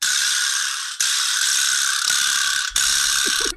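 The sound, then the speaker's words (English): A vibraslap is struck repeatedly, producing loud, bright, buzzing rattles in about four bursts, each sharp attack followed by a sustained clattering buzz. No one speaks. “All right, watch this dingus play a vibra slap now.”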